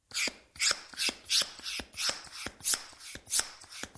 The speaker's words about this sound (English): Got to be pumping up a ball, isn't it? Surely. Pumping up a ball.